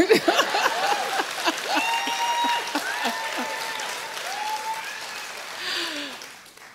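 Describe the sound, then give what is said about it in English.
An audience claps steadily for several seconds, a dense patter of many hands with scattered cheers and whoops rising over it, then the applause thins and fades out near the end. “No applause.”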